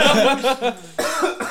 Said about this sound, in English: Yeah, I mean, it's like I got something stuck in my throat all of a sudden. Mm-hmm. But there's that. Yeah, you gonna cough? I think I need a minute.